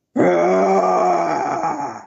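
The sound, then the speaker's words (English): A man lets out a loud, sustained roar-like growl for about two seconds, starting abruptly and trailing off slightly at the end, a voice imitating an animal's roar with no other talk. “That was a roar.”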